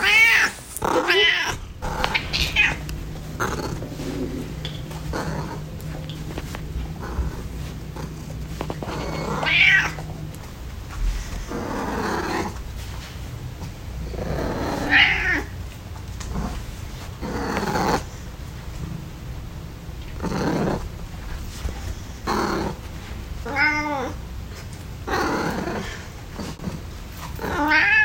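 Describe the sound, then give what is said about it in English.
A cat named Cherry meows and caterwauls repeatedly, drawn-out wavering yowls and shorter cries spaced irregularly, with low growling in between and no talking. “Those were the Raws of Cherry the Cat”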